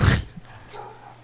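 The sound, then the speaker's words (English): A single sharp, loud dog bark, set off when someone tripped over a fixture on the back of a door, followed by a brief lull with faint whining or yipping sounds trailing off quietly. “Make my dogs bark because he tripped over the little bum, bum, bum, bum, bum, bum, bum, bum, bum, bum thing on the back of the door.”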